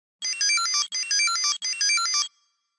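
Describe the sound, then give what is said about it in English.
A Tamagotchi handheld electronic pet plays a tinny, high-pitched beeping melody in three quick back-to-back phrases, loud, then stops abruptly. No one speaks. “Is it a Tamagotchi?”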